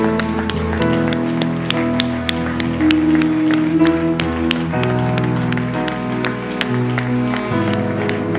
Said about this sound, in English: We'll keep clapping. We will keep waiting for you.